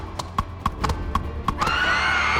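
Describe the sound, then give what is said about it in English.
Hooves clop at a quick, steady pace, sharp, then a horse rears and lets out a loud, drawn-out neigh that rings over the last few steps. “The horse reared.”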